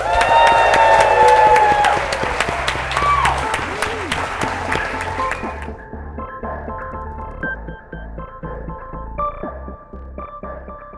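An audience applauds steadily, a dense wash of many hands clapping with a few whoops, holding loud for several seconds before thinning slightly toward the end.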